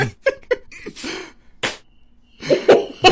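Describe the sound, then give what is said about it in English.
A loud, meaty slap on the leg lands sharply, surrounded by short breathy vocal bursts like grunts, coughs or stifled laughter. “That was a pretty meaty slap.”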